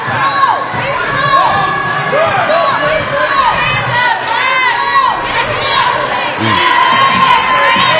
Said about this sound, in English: Loud gym here tonight. As to be expected.